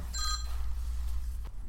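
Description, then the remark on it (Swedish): A short, high electronic phone ring chirps once near the start, then fades, leaving a steady low hum of room noise with no one speaking. “Ringer Henry?”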